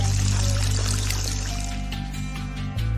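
Water from a new water well pours steadily and loudly, a continuous splashing gush running the full length with a low droning hum underneath and no one talking.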